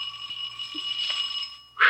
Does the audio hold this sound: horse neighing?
no